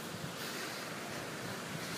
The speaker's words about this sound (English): And then, as you'll be able to hear more and more, there's a man-made waterfall cascading down towards the corner to try to present an affluent image